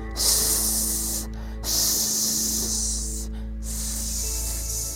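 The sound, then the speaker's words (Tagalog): Loud, sustained hissing from many snakes of different colors and lengths, spreading their necks and flicking their tongues, comes in three long waves separated by brief pauses, layered and continuous, with a low steady rumble underneath and no voices. “Kahit saan nila ibaling ang paningin ay may mga ahas na naglalapara ng mga leeg at naglalawitan ng mga dila.”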